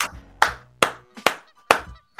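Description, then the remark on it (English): Five or six sharp hand claps in a slow, even rhythm, each a crisp smack with a short ringing tail, with no talking. “Oh, you clap for that one.”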